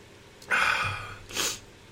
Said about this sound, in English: I apologize to those on Twitch watch me sneeze and blow my nose and whatnot. I think I took out the trash in the office today, and I don't know if that kicked up a dust cloud or something, but ever since then, I am a mess.